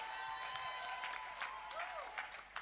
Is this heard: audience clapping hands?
yes